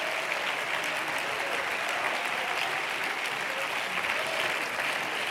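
An audience claps their hands to magnify God in a dense, steady burst of applause that stays loud and even throughout, with many overlapping claps and no voices standing out.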